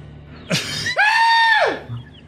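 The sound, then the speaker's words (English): A loud, exaggerated human sneeze, done as the loudest possible sneeze: a short breathy burst, then a long, strained, high-pitched voiced cry that swells and drops off, almost like a shout. No talking. “Do the loudest sneeze. This is how I sneeze at the house”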